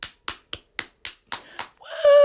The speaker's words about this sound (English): However, round of applause here, everyone.